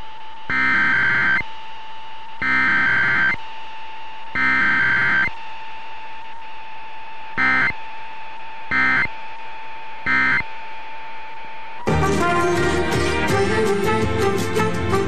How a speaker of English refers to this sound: The following tones are part of the emergency alert system.